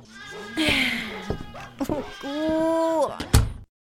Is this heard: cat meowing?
yes